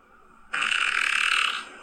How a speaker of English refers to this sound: So this guy is farting on his girlfriend, I think.